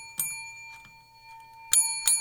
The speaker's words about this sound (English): Wait, hold on. Oh, we have your bell. Yeah, right? I don't know. Do you like my bell better or his?